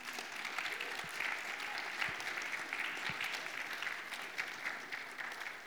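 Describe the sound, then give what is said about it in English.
Steady applause from an audience fills the whole stretch, a dense, even wash of many hands clapping at a fairly constant loudness with no speech over it. “So let's give them a round of applause and welcome them up here.”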